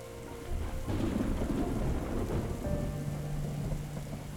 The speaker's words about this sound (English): The sky screamed in anguish in late October 1865. Anita woke in the middle of the night to the pounding of rain and hail against the tin roof. The flimsy boards of her house shook.